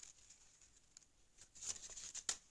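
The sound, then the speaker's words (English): Crinkling and crackling of paper being crumpled near the microphone, starting soft and growing louder with sharp bursts near the end, with no talking. “please stop making the noise in the speaker that nobody wants to hear. With my perfectly good paper that you've ruined.”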